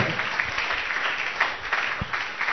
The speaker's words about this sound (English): Clap your hands for mercy.